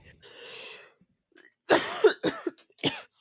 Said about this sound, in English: Sorry, I got really fucking sick after the con, so I have this cough that I can't get rid of.